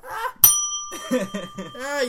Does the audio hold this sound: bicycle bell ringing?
yes